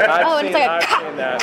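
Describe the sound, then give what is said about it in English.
A person's voice imitates a squirrel barking, producing a quick string of loud, yappy chirps and squeaky barks with wavering pitch, lasting just over a second. “And the squirrel will climb up to the tree to the point where like the dog can't reach it anymore and bark back.”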